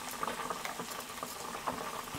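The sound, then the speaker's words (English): Mushrooms sizzle steadily in hot deep-fryer oil, a dense crackling hiss with scattered sharper pops, continuous throughout without any voices. “The mushrooms are frying, but they're okay.”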